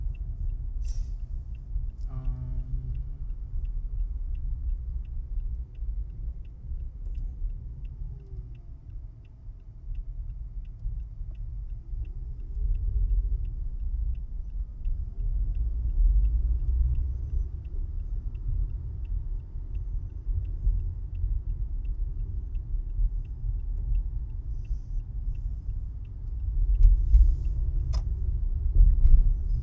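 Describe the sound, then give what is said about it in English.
Steady low road and engine rumble from inside a car moving through traffic in LA, turning across four lanes toward the far right lane, with a faint, regular turn-signal ticking running underneath; no one speaks. “Turning through four lanes. I have four more to go.”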